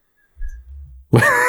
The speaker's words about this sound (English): Just yawns directly into the microphone to let us know to move on.